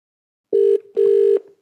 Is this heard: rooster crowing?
no